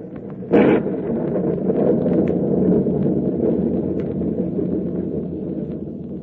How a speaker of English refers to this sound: Well, the storm seems to be subsiding somewhat, sir. It may be just a temporary lull, but in case it's a real break, we're going to take advantage of it.